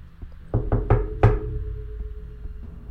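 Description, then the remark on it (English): Four heavy, booming bangs on a door in quick succession, the last the loudest, followed by a low lingering rumble and quiet background noise; no voices. “There is a very loud ruckus from the other side of the door. It almost sounds like they're trying to kick the door in.”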